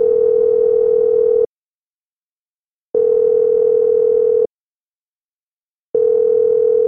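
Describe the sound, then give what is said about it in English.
A steady electronic telephone ringing tone on an outgoing phone call sounds in long, even bursts, about a second and a half on, then a second and a half of silence, repeating three times with no voices. “Let's get Simon on the phone.”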